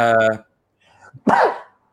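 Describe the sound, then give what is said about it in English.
After a brief stretch of voice, a few quick, faint intakes of breath lead into one sharp, hissy burst, like a single sneeze, that fades quickly into silence. “Bless you.”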